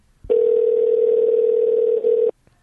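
A single steady telephone ringing tone, a loud continuous electronic buzz lasting about two seconds with a brief flicker near the end, then cutting off into silence. No voices.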